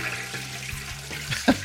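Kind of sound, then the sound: household object, toilet flushing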